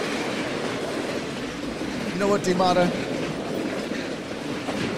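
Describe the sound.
A steady rumbling train runs throughout, with a brief tonal, horn-like burst in the middle; a man talks over the continuous rail noise.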